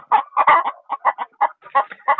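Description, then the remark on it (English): Hens cluck loudly and rapidly after laying their eggs, in a rhythmic string of short, choppy calls, several bursts tumbling over one another with no talking. “But after they laid their egg, they make these noises like you can totally hear them now, right?”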